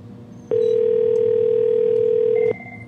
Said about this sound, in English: That's the phone ring.